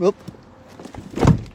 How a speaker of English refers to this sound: Oop. It started raining. I had to close my door.